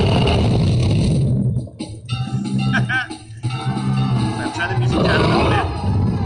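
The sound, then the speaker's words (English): A dragon battle sound effect without rain: loud, growling monster roars layered with rumbling battle noise, rising and falling over several seconds with a brief dip in the middle before surging again. “Then we need to have the dragon battle.”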